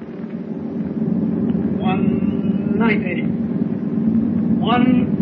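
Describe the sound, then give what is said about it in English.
A heavy, steady submarine engine drone rumbles low and constant throughout as the motors run at full speed ahead and the submarine rises toward the surface, with a few quick rising whistling tones cutting in over it at intervals. “Start the motors. Hurry. Engine room. Full speed ahead.”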